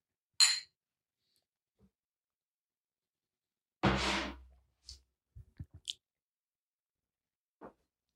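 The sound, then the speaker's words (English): Glasses clink together in a toast: a few sharp, bright taps scattered among soft knocks and a brief louder clatter, with no talking. “Cheers. Cheers.”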